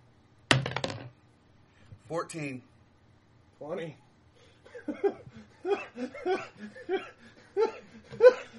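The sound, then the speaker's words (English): A die clatters sharply onto a hard tabletop in one quick rattle as the game master rolls it and turns up a 20, then people laugh and start talking. “And here the GM just turns up 20.”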